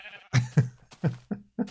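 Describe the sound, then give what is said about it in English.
Sheep bleating in a quick series of five or six wavering, vibrato-laden calls, clear with short gaps between them. “Somebody's hearsing around over here, because I just saw a pink sheep.”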